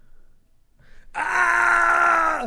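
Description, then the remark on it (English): After a brief quiet breath, a voice lets out a sustained, strained scream, imitating terrified screaming as if being murdered, for over a second, held steady without full volume. “Or like I'm being murdered, like, screaming? Like that kind of screaming.”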